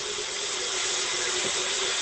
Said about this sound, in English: Hello? What is that? That's me filling dog water. Oh. I waited. I thought we were on a little break there because of the traffic report. Good work. No, I saw that my dogs were thirsty. And I should have said loud noise warning.